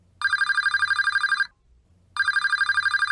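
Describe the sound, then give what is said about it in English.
A telephone ringing tone heard from the caller's end while calling a number found on a scrunched-up bit of paper, which reaches an Indian restaurant in Belgravia: a warbling electronic ring that sounds once, pauses briefly, then starts again, steady and clear with no one speaking. “It has a phone number on it. Nothing else, just a phone number. Give it here. I'll ring it.”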